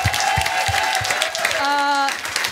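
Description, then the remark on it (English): A crowd claps in steady applause for the guests of the show for a couple of seconds, with cheering voices rising over it, including a sustained whoop or shout near the end. “Guys, big round of applause for our guests this afternoon.”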